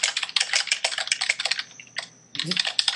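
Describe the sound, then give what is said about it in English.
Rapid, clattery typing on a big, clunky IBM keyboard about 20 years old, loud, with dense irregular keystrokes that pause briefly before resuming. “I have a big clunky IBM keyboard.”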